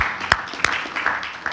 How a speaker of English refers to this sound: And let's clap our hands to that one.